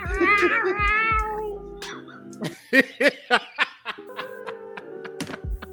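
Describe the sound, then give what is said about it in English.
A cat lets out a long, wavering yowl, then a rapid string of short, sharp meows and cries in quick succession, loud and with no talking over it. “Is there a cat fighting?”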